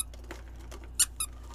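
A small squeaky dog toy, one of a dog's toys and too small for him, is squeezed twice in quick succession, giving two sharp, high-pitched squeaks a fraction of a second apart over a quiet low hum.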